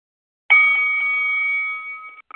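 A bell is struck once to start a rap battle round, giving a bright, sustained metallic ring that slowly fades over about two seconds, followed by a couple of faint, brief taps near the end. No voices.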